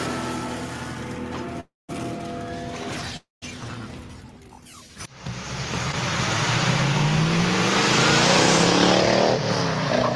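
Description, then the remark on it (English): A 1971 Dodge Challenger muscle car engine rumbles at idle with a couple of abrupt cuts, then revs up into a loud, rising roar that builds and holds, with no talking. “a sweet little 1971 Dodge Challenger owned by my friend”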